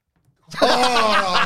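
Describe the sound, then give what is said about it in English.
After a brief silence, a person breathes out loudly and breathily, imitating a dog's panting in a sustained, slightly voiced huff lasting about a second. “Do some panting.”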